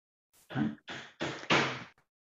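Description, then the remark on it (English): Four heavy, muffled blows of hammering land in a steady rhythm, each with a short ringing tail, coming from outside a door, with no one speaking. “Anyway, there is massive hammering happening outside my door.”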